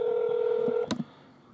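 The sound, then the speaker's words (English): A steady electronic phone tone sounds clearly for most of a second as a call to a friend is placed on speaker, then cuts off with a sharp click and a brief rustle before fading to quiet background hiss. “I'm just going to call all my friends in my phone.”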